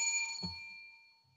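A single bell strike rings out with bright, sustained metallic tones that slowly fade. A soft low thump sounds partway through as the ringing decays, with no voices present.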